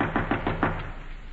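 Five quick, evenly spaced knocks on a wooden door, moderately loud, followed by a brief quiet room tone. No one speaks.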